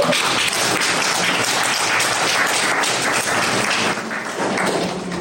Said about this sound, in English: Like you guys just shared, you guys were very good. A round of applause for you guys.